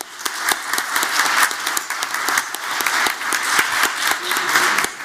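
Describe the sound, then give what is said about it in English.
A crowd applauds steadily for Dallas Mayor Michael S. Rawlings as he is introduced as a debate judge, many hands clapping in a dense, sustained wash of sharp claps that holds at an even level for several seconds, with no voices on top. “Let me introduce first, and I suggest we have a round of applause for our Mayor of Dallas, Michael S.”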